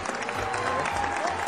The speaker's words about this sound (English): Yeah, we got that applause going. Yes.